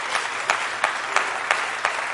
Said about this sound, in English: Won't you invite my brother with a hand clap of praise tonight?